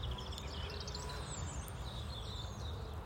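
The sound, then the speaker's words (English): Soft birdsong, a string of quick chirps and trilling notes over a steady low outdoor rumble, with no one speaking. “I'm going to keep giving you these big pauses just to sort of listen to what's happening here. I know it is mainly birdsong.”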